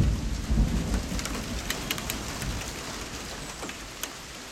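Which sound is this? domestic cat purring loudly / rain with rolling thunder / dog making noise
rain with rolling thunder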